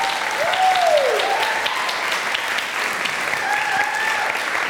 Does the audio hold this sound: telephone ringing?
no